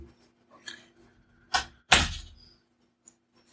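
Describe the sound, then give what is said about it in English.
A door is pushed shut: some faint shuffling, then a sharp knock followed a moment later by a louder, fuller thud that rings out briefly before quiet returns. “No, I was going to say, keep going, I was going to shut the door.”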